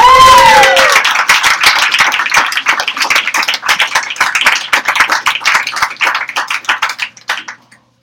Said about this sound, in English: I just want you to get the proper applause.